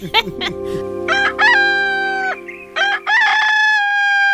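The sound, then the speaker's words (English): An animated dinosaur in a daytime film scene crows cock-a-doodle-doo like a rooster, loudly, with short clipped opening notes followed by two long, bright, strained held calls. No one speaks. “We see the same animation of the howling dinosaur from earlier, but now it's lit for day and the dinosaur is cock-a-doodle-dooing.”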